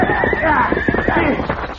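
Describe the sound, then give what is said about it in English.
A horse whinnies loudly, its high wavering cry rising and falling, with a busy clatter of hooves underneath throughout. “Who's taking me off this horse?”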